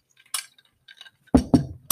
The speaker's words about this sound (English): So I'm drinking my coffee. You can hear it. Take a sip.